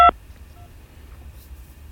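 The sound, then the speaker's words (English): A single short touch-tone beep from a telephone keypad, pressed during a call to an automated phone menu, sounds right at the start, loud and clipped, followed by quiet low line hum with no voices. “If this is the phone number associated with your Windstream account, press 1. Otherwise, press 2.”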